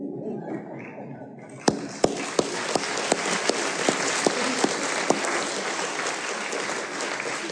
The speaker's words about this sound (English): Even the applause sounded good.